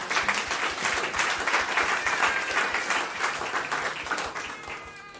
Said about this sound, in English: And keep it that way. A round of applause.